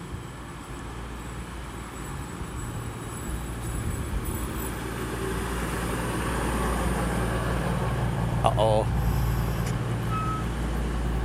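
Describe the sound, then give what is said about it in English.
A train rolls into a station with a deep, steady rumble that grows gradually louder, a brief screech of brakes near the end, and one short spoken exclamation. “Where is the train? Ah, here is the train.”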